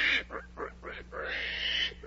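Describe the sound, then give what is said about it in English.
A pig grunts four times in quick, choppy bursts, then lets out a long, high squeal, all fairly loud with no talking. “Well, there's no mistaking it now. You are turning into a pig.”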